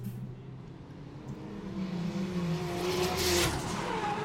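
A race car engine roars at the Oulton Park racetrack during a British GT race weekend, its pitch climbing steadily as it approaches, swelling to a loud pass-by near the end with no one speaking.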